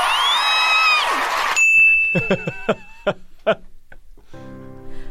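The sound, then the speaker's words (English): A bright phone notification ding rings out once partway through, its clear tone lingering for over a second while short bursts of voices chatter around it, following a dense noisy opening. “That made me grab my phone.”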